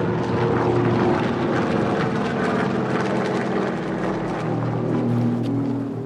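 A steady, low droning of Japanese enemy propeller warplanes in the air over Guangdong Province, near the southern coast of China, a dense continuous rumble with layered harmonic hum that stays loud and constant throughout, with no voices.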